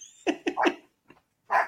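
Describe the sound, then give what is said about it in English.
The speaker's own dogs barking, agitated: three sharp barks in quick succession, a brief faint yip, then one more loud bark after a short pause, with no talking. “My dogs are mad.”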